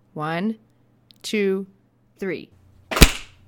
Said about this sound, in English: So I'm going to do 1, 2, 3, and then we'll clap, okay? Clap right by your microphone, okay? Make it a good one. Make it your best clap of this year.